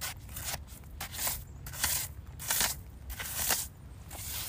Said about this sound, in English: Can you hear the sound of the sand?